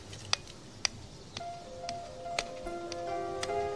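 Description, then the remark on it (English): A metronome ticks at a steady, moderate pace, seven crisp clicks about half a second apart, while soft sustained musical tones swell in underneath from midway on. “So my brother and I learned to cast Presbyterian style on a metronome.”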